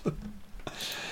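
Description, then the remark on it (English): A single sneeze: a brief intake of breath, then a sudden explosive burst trailing into a breathy hiss. There is no talking. “sorry, a first on the podcast there. I sneezed.”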